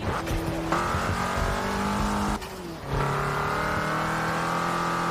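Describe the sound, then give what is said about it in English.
A race car engine roars and revs up and down with a harsh, gritty tone, shifting briefly before climbing again, while tires squeal faintly underneath. Loud, with no talking. “Ugh, this car sounds nasty.”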